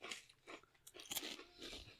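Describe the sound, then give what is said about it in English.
Crisp crunching of a dry, wheat-based, lemony fish-flavoured crispy snack being bitten and chewed, a rapid series of sharp brittle bursts over two seconds with no talking. “It's like a wheat crunchy. It's all wheat-based. And the crunch really works there.”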